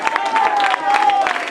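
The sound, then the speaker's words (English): An audience claps their hands in praise of God in a dense, steady patter, with voices calling out beneath it and a sustained held tone running through the sound. “Clap your hands.”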